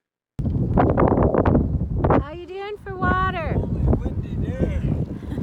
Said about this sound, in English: Holy windy day.